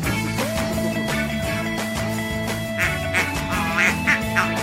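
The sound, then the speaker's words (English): A duck quacks repeatedly in short nasal bursts, loud, over a steady background of sustained tones, with no one talking. “Oh, he's quacking up, folks.”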